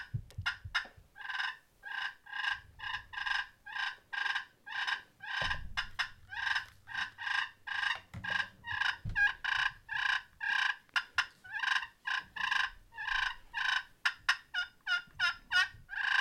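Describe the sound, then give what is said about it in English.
A turkey fighting purr made on a call, like rattling deer antlers, to draw in a gobbler: fast, raspy, rolling purrs pulsing steadily and loudly, about two or three per second, for the whole stretch with no talking. “But this is a fighting purr.”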